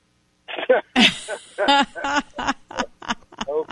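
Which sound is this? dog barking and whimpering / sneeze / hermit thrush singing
sneeze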